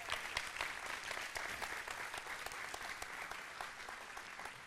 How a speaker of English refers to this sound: All right, y'all give all the moms one more big hand clap today.